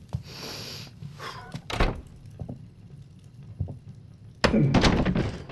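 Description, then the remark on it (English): A door is opened: a solid thunk and a few small knocks, then a louder, sustained rush of rattling and movement as it swings open. No one speaks. “I opened the door and, it wasn't as bad as everyone says.”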